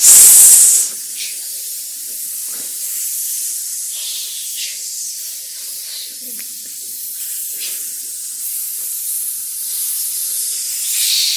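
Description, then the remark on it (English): A person hisses steadily through the teeth, a long, loud breathy hiss sustained for about ten seconds with slight swells and soft breaks, no words spoken. “So hissing. Hiss.”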